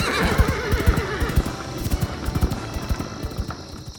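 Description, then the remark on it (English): Horses neigh loudly with wavering, shrill whinnies while hooves clop in a rapid, uneven patter, the whinnying fading after the first couple of seconds as the hoofbeats continue. “I don't think the horses are much happy with whatever this is.”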